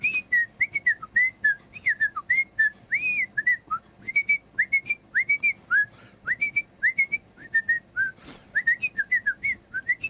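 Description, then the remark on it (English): A person whistles a lively original melody of quick, bright notes in steady succession, clear, with short gaps between phrases and no talking. “It was a lot of just whistling in a row.”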